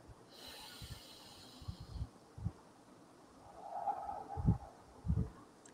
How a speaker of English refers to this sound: Just sit there, close your eyes, breathe through your nose, and exhale through your mouth. Do this repeatedly for 2 minutes, and every breath that you take, focus on the sound of your breathing.